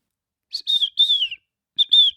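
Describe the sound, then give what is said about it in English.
Someone whistles an imitation of a bird song: a phrase of three bright, slightly sliding notes, a short pause, then two more, clear with no talking. “I've been working on that bird song for you.”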